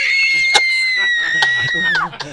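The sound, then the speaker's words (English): A voice imitates a shrill, high-pitched screech, holding one piercing note for about two seconds before it wavers and drops away at the end. It's loud, with no other talk. “Maybe the women came because they thought from your screech that it was a woman in need.”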